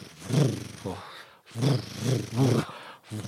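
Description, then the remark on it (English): A voice imitates a motorbike engine starting and revving, with three rough, buzzing bursts that rise and fall, each swelling loud before a brief pause. “Give me the sound of that engine when you click.”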